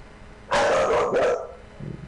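Dogs bark loudly, a quick cluster of two or three sharp barks over about a second, fading into a softer low sound at the end. No one speaks.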